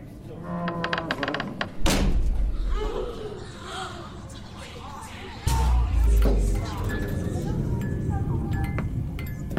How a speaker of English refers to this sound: The door shut, and the lights went out.